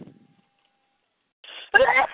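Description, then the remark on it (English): A single loud sneeze: a short, breathy intake of air followed by a sudden, forceful burst that cuts off after a moment, with near silence before it. “Bless you.”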